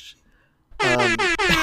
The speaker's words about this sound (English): Yes, my own air horns.